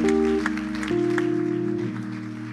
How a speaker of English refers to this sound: Clap your hands. Make him feel welcome as he comes.